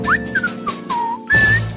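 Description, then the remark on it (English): A man whistles a short, wandering tune, the bright pure notes sliding up and down in a few phrases, with no one talking. “My wife hates when I whistle.”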